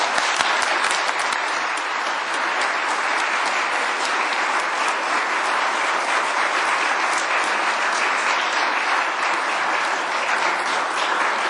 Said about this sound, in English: Let us welcome these sisters and brothers in Christ to this community of faith with a round of applause.